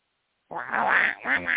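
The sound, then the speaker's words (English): A raspy, buzzing cartoon-duck voice in the manner of Disney's Donald Duck quacks out two gabbling bursts after a brief silence, loud, a longer squawk followed by a shorter one. “So the lawyers for the Disney want Donald Duck to testify in the court.”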